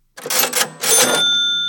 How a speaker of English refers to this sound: A cash register is where a store keeps money.